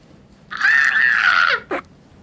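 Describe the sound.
A voice imitates an owl's battle cry: one loud, sustained, high-pitched screech lasting about a second, holding a steady tone before dropping off, followed by a short, sharp yelp.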